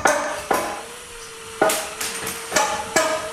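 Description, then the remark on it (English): Roadside construction hammering right outside a window: five sharp metallic strikes in an irregular rhythm, each one ringing briefly before the next. The blows are loud and clear with no one talking. “Has roadside construction ever messed up your life and your schedule?”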